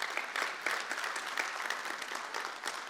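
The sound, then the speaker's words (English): An audience claps steadily together, a dense, continuous wash of many hands at moderate volume with no voices standing out. “Yeah, we can clap for that.”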